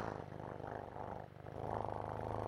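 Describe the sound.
A person purrs at cats, imitating a cat's purr with a steady, rumbling, rhythmic trill held for a couple of seconds. It is continuous, with a slight dip midway, and no other talking.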